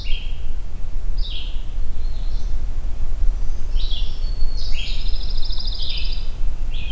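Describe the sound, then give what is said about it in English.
A pine warbler sings a series of short, high trilled phrases, clear, over a steady low outdoor rumble with no voices. “There we go, pine warbler.”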